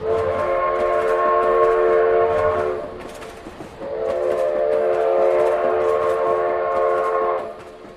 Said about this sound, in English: Sound of the whistle as the train approaches its next stop.